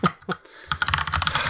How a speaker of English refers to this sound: This is going to be loud because I've got a loud keyboard.